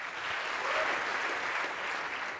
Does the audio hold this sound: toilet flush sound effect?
no